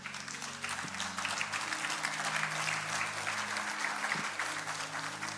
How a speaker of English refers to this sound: Y'all stand up. Everybody stand up. Give the Lord a big hand clap today.